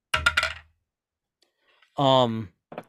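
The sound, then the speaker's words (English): A d20 die clatters across a hard surface in a quick burst of sharp plastic clicks, followed by silence, a brief voiced sound, and one more faint clack. “You rolled your d20, right?”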